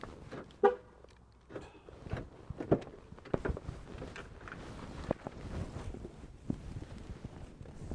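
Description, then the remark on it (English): A car pulls into a parking spot just before midnight, its engine rumbling amid scattered clunks and knocks, with a sharp brief tone near the start. No one speaks. “Pulled into my parking spot and headed for the front door just before the clock struck midnight, and this rock star turned back into a pumpkin realtor.”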